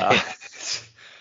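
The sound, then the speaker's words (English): A young dog growls and yips in short, close bursts, a rough rumbling snarl that rises and dips over about a second, with no talking. “As much as I thought raising a puppy, or at least, you know, getting a puppy would be great, it is so stressful.”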